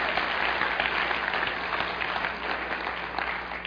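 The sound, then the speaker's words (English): Steady audience applause for a professor fills the whole stretch, a dense wash of many hands clapping at once, fairly loud and even, with a faint murmur of the crowd underneath. “Can you give him a round of applause that he's willing to get a question?”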